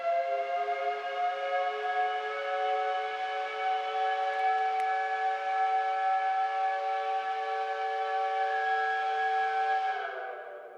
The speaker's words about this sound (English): My favorite sound in the world, the steam whistle that goes off once an hour here at Georgia Tech announcing changes of classes or don't be late for class.